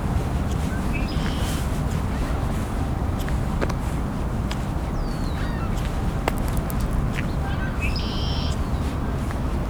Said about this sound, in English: Back at the red-winged blackbird again, and a few gulls flying over. So ring-billed gulls. Oh, and there's a herring gull too.